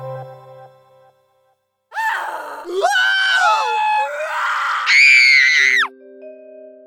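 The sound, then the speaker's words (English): A person lets out a loud, piercing scream lasting several seconds, wavering in pitch and rising sharply near the end, framed by short electronic tones before and after. “When you hear the word Scream, what do you think of?”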